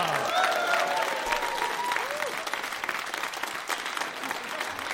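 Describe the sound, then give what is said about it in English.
A crowd applauds TK Cooper steadily, with dense, continuous clapping and a few whoops and cheers rising over it early on, then settling into sustained loud applause. “So please, a big cheer round of applause for the wonderful TK Cooper!”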